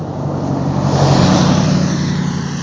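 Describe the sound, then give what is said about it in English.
A truck with a mustache on it drives past, its steady engine rumble and road noise swelling toward the middle before easing off slightly, with no voices. “Boy, that guy's got a mustache on his truck.”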